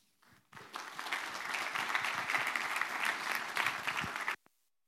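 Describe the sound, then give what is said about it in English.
An audience bursts into sustained clapping after a brief hesitant start, welcoming a speaker before she speaks, following an opening prayer. A dense steady wash of applause lasts about four seconds before cutting off abruptly. “I've never been clapped before I ever spoke.”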